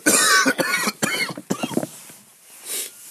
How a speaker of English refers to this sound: A little under the weather, too. I mean, like the last few days, I've had a cough. So, like, I don't know, it's not like I'm coughing constantly. I'll cough every, like, fucking 6 minutes or so.